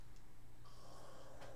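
Heavy breathing of a person asleep in a studio: a long, airy, rasping breath swells up and holds, then a short, sharper snort-like puff follows, all fairly quiet with no talking.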